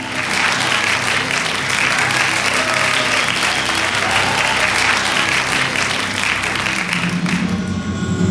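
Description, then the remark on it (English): A large crowd of citizens cheers and applauds steadily around Ebenezer Gesundheit Isigne on stage as he attempts to take charge of Persuasic County, a dense wash of clapping and excited voices that stays loud throughout without a break. “Ebenezer Gesundheit Isigne, has returned, and he's on stage, surrounded by cheering citizens as he attempts to take charge of Persuasic County.”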